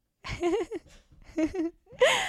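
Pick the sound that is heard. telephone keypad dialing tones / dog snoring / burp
dog snoring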